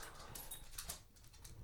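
A dog whimpers softly in short, high-pitched bursts, faint, over a low background rumble with no one talking.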